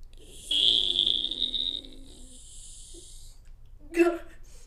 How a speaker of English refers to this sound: All right, found the key. Just going to stick it in the door here. All right, opening the door.